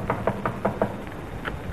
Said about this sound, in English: Go ahead, knock on the door.